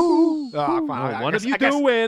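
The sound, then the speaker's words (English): A person imitates an owl, voicing several wavering, drawn-out hoots in quick succession, fairly loud. “They're in the backyard of a house without siding, barely lit by the setting sun, accompanied by the sounds of wind and owls.”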